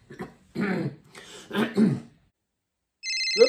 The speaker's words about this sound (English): And here's a phone call I made to the priest in Nina. Now, I must give that priest in Nina a ring.